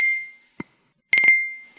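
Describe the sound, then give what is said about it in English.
A small brandy snifter clinks as it is handled during a magic trick, several sharp glassy taps, some in a quick cluster, each leaving a clear, high ringing tone that slowly fades between hits. “Then I take the glass like this, and I go, shh.”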